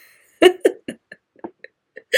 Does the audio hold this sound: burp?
yes